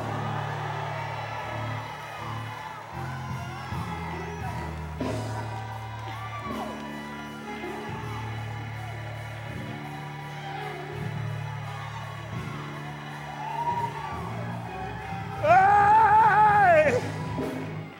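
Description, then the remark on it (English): An audience whoops and shouts over steady, sustained organ-like music, scattered cries throughout, then swells into a loud burst of yelling near the end. “Look at somebody and say, neighbor, if you can't dance, you ought to open up your mouth and just shout glory.”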